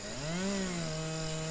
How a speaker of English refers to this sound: Alright, that's definitely the logging crew. Hear the fucking chainsaws?